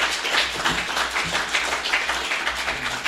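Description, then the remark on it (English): A conference crowd applauds its first speakers in the evening, many hands clapping in a dense, continuous wash of bright crackling noise with no pauses and no voices. “Let's give our first speakers of this conference a round of applause this evening tonight.”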